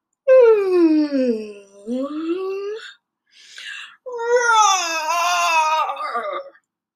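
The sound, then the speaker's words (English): A voice imitates the roar of Dylan the Dinosaur in a children's story, in two long, loud, strained vocal blasts. The pitch dips and rises like a wailing growl, with a short breathy huff between them. “Aria woke up to Dylan's roaring.”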